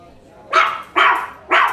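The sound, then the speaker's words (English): A dog called Traffic Dog barks three times in quick succession, loud, each bark a short sharp burst with brief pauses between them. “Oh, you mean Traffic Dog.”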